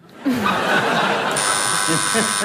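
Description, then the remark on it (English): An audience laughs and chuckles, then a steady, harsh electronic quiz buzzer cuts in partway through and holds its flat tone to the end, over the ongoing laughter. “Buzzing yourself again. Very anti-French, your buzzing there.”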